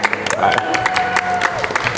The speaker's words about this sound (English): Golf clap for you, sir. Nice.